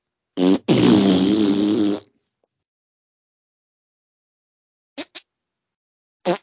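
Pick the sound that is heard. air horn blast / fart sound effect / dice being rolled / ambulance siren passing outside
fart sound effect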